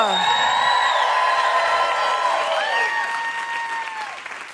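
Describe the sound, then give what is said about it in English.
Loud, sustained applause from a stand-up comedy audience, with high whoops and cheers rising over the clapping as comedian Hannah Einbinder is welcomed to the stage, slowly easing off toward the end. “Then please welcome to the stage the incredible Hannah Einbinder.”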